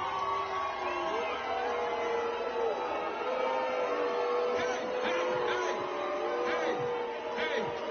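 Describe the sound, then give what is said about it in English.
A large concert crowd on the Jersey Shore boos and jeers loudly and continuously at Governor Murphy after he is invited on stage, with scattered shouts and whoops rising out of the steady roar of many voices. “And the crowd just let Governor Murphy have it.”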